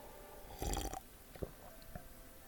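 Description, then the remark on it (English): A short slurping sip of lime cordial from a glass, followed by a couple of soft gulping clicks as it is swallowed, with no talking. “Hey, let me just have a little sip of lime cordial.”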